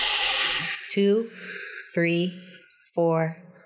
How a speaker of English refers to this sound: you release through your mouth. And you want to do like a shh sound.